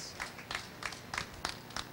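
Faint applause from an audience welcoming a speaker: sparse, steady claps land roughly every third of a second, each a sharp, bright burst, with no voices over them.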